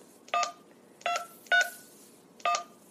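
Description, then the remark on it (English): Four short telephone keypad tones beep at uneven intervals as a phone number is dialed to call What If World, each a clear dual-pitched touch-tone press, fairly loud with quiet gaps between them and no talking. “That phone number is supposed to be 334. Something.”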